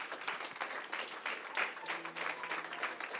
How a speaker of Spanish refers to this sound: Amén, hermano. Den un aplauso al Señor, hermano.